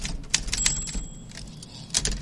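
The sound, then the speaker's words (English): Typewriter typing sound effect: a handful of sharp, irregular mechanical key strikes, moderately loud, with a thin high ring briefly hanging in the background. No voices. “Next up, give me some typewriter, Luigi”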